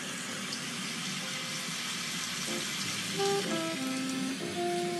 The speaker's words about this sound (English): Thunderstorms are shaking. I lie awake through the night, feeling Gaia's heartbeat. Yeah. Wake up calls come in many ways, many sizes, many shapes. And this week it's come as a thunderstorm.